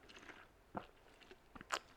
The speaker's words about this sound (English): Sorry, I had to take a quick sip. It's just tea, it's not booze.